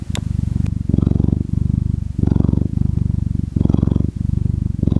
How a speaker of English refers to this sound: He loves to snuggle and purr.